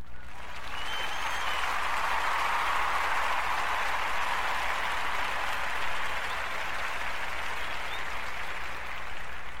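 A crowd applauds steadily for nearly ten seconds, a dense wash of many hands clapping at even loudness, with no voices standing out.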